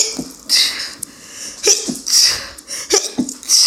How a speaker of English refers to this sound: Oh, I have to sneeze.